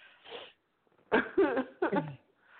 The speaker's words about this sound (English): All I can say is, let me clear my throat.